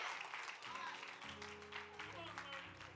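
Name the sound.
half-hearted audience clapping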